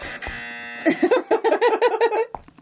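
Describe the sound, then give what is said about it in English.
A harsh, steady electronic buzzer drones for just under a second, rich in raspy overtones, then gives way to a stretch of lively talking. “That's the buzzer”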